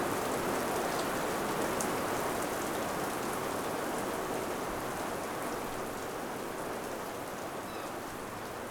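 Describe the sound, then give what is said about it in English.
Steady rain patters against glass in a dense, even hiss with faint scattered drop ticks, constant throughout, with no voices, at a spot looking out to Sisters Island. “It's raining here now, so you can just see bits of rain on the glass.”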